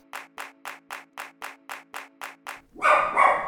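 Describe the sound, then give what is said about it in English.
A dog barks in a quick, evenly spaced run of about ten short yaps, then lets out two louder, rougher barks to finish. No one talks. “I think we're going to pause and remove the dog.”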